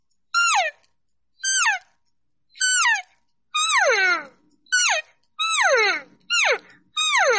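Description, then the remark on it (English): A person imitates a young calf's call: eight short, squeaky, high-pitched mews, each sliding downward, without a mature animal's deeper voice, repeated in a steady series with brief pauses and no talking. “remember that calf is young, it's not dropping, it's not doing that little deeper voice, doesn't have much control. It's real baby squeakish”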